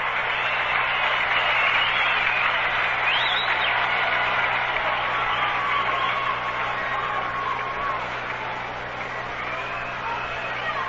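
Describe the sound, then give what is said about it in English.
A ballpark crowd applauds Bob Gibson as he comes out with two out in the bottom of the seventh, a steady, dense wash of clapping and cheering that holds for the whole stretch, easing slightly toward the end, with occasional shouts rising above it. “He'll get a fine hand from the crowd.”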